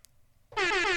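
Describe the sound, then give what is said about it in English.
A loud air horn sound effect bursts in abruptly halfway through and blares steadily to the end, with a brief faint click just before it. “I was wondering if you're going to do rap air horn against yourself.”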